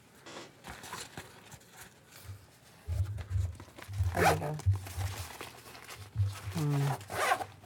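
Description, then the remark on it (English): A rugged self-healing zipper on a foam-padded pistol case is pulled open in a series of rasping tugs, with short bursts of voice and low thumps mixed in between the pulls. “Rugged self-healing zipper, foam padding for protection.”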